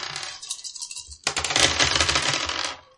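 Two rat dice are rolled off in a tabletop role-playing game: they rattle lightly, then a loud burst of rapid clattering clicks follows as they tumble across a hard surface, fading out after a couple of seconds. No voices.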